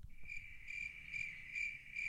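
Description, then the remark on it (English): A cricket sound effect: crickets chirp steadily in a continuous high-pitched trill with faint rhythmic pulses, fairly loud, over a low rumble of background noise; no one speaks. “But if we do, you know, we can just play crickets.”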